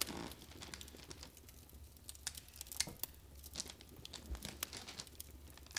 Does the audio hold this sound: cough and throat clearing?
no